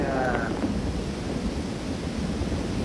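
A steady, dense wash of rain falls outside, a continuous rushing hiss with low rumbling underneath and a brief tonal sound at the very start.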